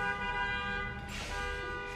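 A car horn blares outside in traffic in one long, steady, buzzy tone that holds for about two seconds, with a brief rush of traffic noise swelling partway through. No one speaks.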